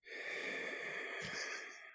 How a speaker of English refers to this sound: The heavy breathing. Please take note. Yeah, it's labored.